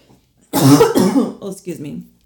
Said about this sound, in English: Like, hey, how's your, oh, excuse me, I have to cough.